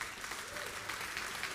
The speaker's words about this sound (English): Come on, y'all. I want you to clap right now because it's the truth.